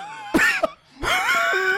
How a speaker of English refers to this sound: But also, this entire episode, I've had something in my throat that I've been trying, so I'm so sorry if all you hear is coughing.